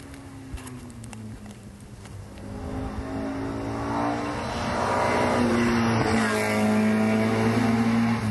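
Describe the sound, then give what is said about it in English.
A Ford Escort Mark II car engine revs and accelerates, its harmonic drone climbing and rising in loudness over several seconds, with brief gear-change dips and a steady, raspy tone throughout; no one speaks. “Escort Mark II. Doesn't sound like it's a Cosworth engine.”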